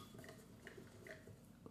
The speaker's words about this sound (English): I'm just going to pour a little bit of water on this. Just I'm going to stir it around a little bit. And then I'll add the rest of it.